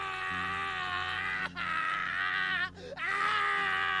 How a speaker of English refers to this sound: It wasn't coming from any of them. It was the scream of a man in terrible, terrible pain.